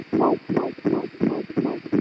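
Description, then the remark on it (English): A fetal heartbeat on ultrasound, of a fetus about 12 and a half weeks along: fast, steady whooshing pulses, roughly six in two seconds, each a muffled low thump over a constant faint hiss. No one speaks. “There's the heartbeat.”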